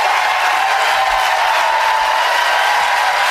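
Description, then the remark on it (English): A large crowd applauds loudly in a standing ovation, a dense, steady wash of clapping and cheering that holds evenly throughout with no speech over it. “Standing ovation. It's very popular in this crowd.”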